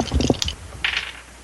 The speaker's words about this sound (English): So you actually can make a spirit check to see if you can unshake from being scared. Okay. You roll your spirit dice and a wild die. Okay, and my spirit is d6, so I'll just roll 2d6.